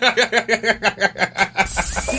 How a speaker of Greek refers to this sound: Είναι η χύτρα.